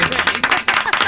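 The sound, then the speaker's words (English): A short burst of applause, dense and loud, with rapid overlapping claps and a few cheering voices mixed in. “I don't get applause when I'm doing something stupid.”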